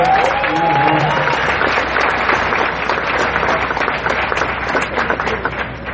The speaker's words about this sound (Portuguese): A liderança daqui tem que dar uma salva de palmas pra galera aqui.